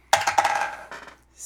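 A small die clatters across a hard surface, several quick bouncing clicks that slow and settle, then a brief final rattle, landing on six. Fairly crisp, with no voices.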